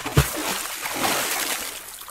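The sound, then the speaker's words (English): A heavy cannonball splash into pool water lands right at the start, followed by about two seconds of churning, sloshing water that slowly settles. “The participants all cannonballed at once, so that means, of course, the pool was empty after the event because they blew all the water out of it.”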